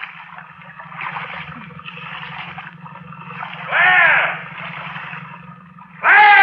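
A paddle swishes through water as a small boat is paddled in fog, in a series of soft, rhythmic strokes over a steady low hum, with a couple of louder vocal bursts breaking in toward the end.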